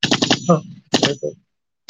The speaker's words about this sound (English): It's the weekend. Yeah, you can never have a weekend without some gunshots, right? Especially here on the west side, yo.